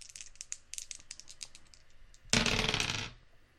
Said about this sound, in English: All right, I'll go ahead and roll my dice here.